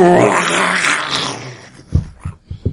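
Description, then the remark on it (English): A loud, rumbling monster roar of a returning creature fills the first second and a half, fading out before four heavy, booming thuds land in uneven succession like giant footsteps as the creature stomps. “Yeah, Morale, you hear a very familiar roar.”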